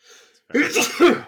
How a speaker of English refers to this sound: Gesundheit.